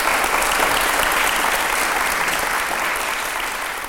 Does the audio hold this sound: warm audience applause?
yes